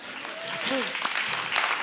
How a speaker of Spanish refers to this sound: Uy, yo pensé que ahí íbamos a aplaudir.